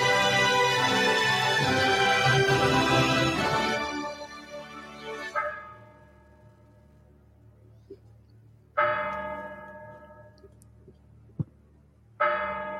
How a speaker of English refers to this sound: As the clock strikes 13, it's Friday, the 29th of December, year of our Lord, 2023.